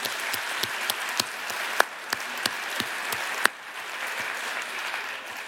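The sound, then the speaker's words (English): An audience applauds steadily for everyone who had their hand up, a dense wash of many hands clapping with a few sharper, louder claps standing out, then thinning and fading off toward the end. “So can we please give everyone that had their hand up a massive round of applause, because that is fantastic.”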